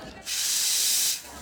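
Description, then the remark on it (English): A steady burst of hissing steam from an espresso machine's steam wand heating milk at Java Cats, rising abruptly and holding for about a second before cutting off, with no talking. “And then once it's at a blood temperature, you dunk it to where it's nice and silent and you're just heating the milk to that perfect temperature.”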